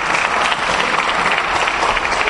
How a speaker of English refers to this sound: And then, my brothers, let's give a round of applause to my brothers who've come before us tonight.